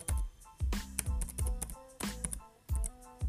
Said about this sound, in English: I'm typing in Championship. Champions League.